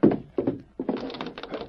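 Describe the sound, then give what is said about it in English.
A locked door is rattled and thumped against its frame without opening: two short jolts, then a longer run of rapid knocking rattles, fairly loud, with no voices. “The door over there is closed”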